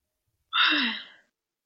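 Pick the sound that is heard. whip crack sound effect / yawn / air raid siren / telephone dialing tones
yawn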